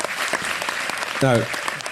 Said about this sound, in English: Thank you, but that's not an achievement. It's actually a damn shame. So I appreciate the applause, but it's actually a damn shame, if I'm completely honest with you.